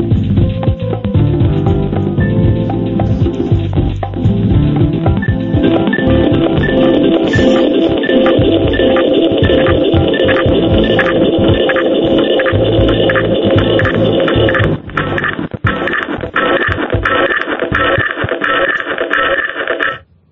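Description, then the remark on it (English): A broken phone line on a caller's line during a phone-in: a loud, continuous, tinny hum and throbbing buzz with a thin whining tone running through it, briefly dipping near the end before cutting off abruptly. “I can't tell if that's the phone system knackered or someone doing something brilliant.”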